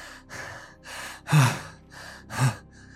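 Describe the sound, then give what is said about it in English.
A person gasps for air in a series of about six ragged, breathy inhales, two of them louder and harsher, with no speech, acting out a character whose eyes open after being healed. “So Favian's eyes open. He's sort of gasping for air.”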